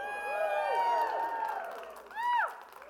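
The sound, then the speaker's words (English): A crowd cheers wildly, with many overlapping voices shouting and whooping in rising and falling pitches, swelling loud for three seconds before a final burst of whoops. “And the crowd goes wild.”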